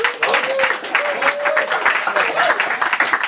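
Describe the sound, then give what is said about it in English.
A room full of people applauds a visitor, a dense steady patter of many hands clapping at once, with a faint voice-like tone briefly carrying over the noise. “How about a round of applause for our visitor?”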